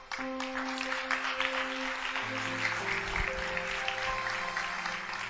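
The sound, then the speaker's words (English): An audience claps for a brother, steadily in a dense, continuous burst of applause lasting several seconds, with sustained organ or keyboard chords humming underneath. “Oh, clap for our brother there.”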